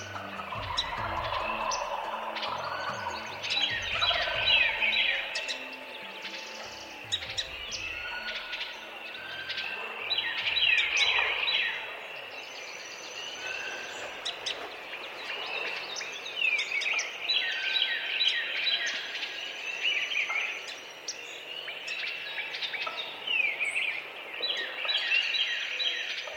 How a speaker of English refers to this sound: We're listening to one of my favorite soundscapes recorded by Douglas Quinn. It's dawn at a wetlands in Haw River State Park in North Carolina.